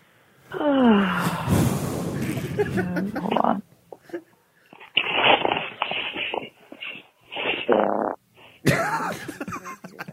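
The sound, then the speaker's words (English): A long, buzzy fart with a wavering pitch from a woman leaving a voicemail while in bed, followed by a string of muffled mumbling and breathy vocal noises over a phone-quality line. “Did she just fart on the phone?”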